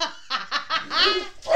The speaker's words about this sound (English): Oh, there's the dog. There's the Cavachon. Let me go grab the Cavachon, okay? There's cats in the garden. She doesn't do cats in the garden.